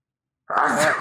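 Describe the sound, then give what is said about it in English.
A single sudden sneeze bursts out after a moment of silence, loud and breathy, trailing off with a slight vocal edge. “The least you guys could do is talk while I sneeze instead of staring at me.”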